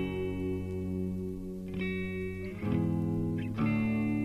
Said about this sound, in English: Not really sure what the bass player is doing. It's getting a little louder here. Bass stepping in for a little bit.